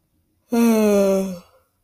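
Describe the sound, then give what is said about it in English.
A single drawn-out vocal yawn, the third in a series, about a second long and voiced, its pitch sliding slowly downward before fading out. No one speaks. “Yawn number three.”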